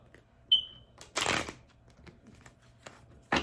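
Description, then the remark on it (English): Tarot cards are shuffled: one longer papery riffle, then a couple of short, sharp card snaps, with a brief high-pitched beep just before. No one speaks. “They did not want to shuffle.”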